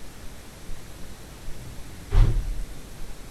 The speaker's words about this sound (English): And then coming up here now, this sounds like a door.